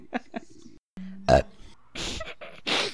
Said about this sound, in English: Sorry. Well, it's cool because it was like silent burp and the little thing went blop.